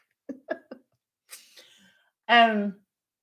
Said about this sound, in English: Excuse me, I have like hiccups. Apparently, some part of me, my throat chakra is all like.